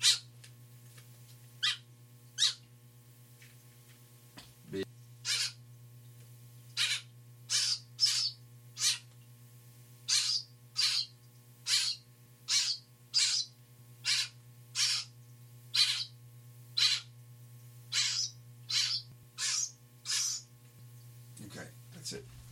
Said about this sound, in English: So baby bird is eating ground up scrambled eggs with a little bit of ground up eggshell in there. And you just got to put your index finger down its mouth. Birds don't have a gag reflex. And it thinks my finger is, I guess, its parent.